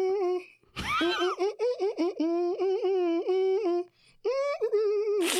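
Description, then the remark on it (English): A person hums a melodic tune alone, sustained voiced notes rising and falling in pitch in a steady rhythm, with a short break near the end before the humming resumes. “Y'all were so close because that's where that I'm humming the sample.”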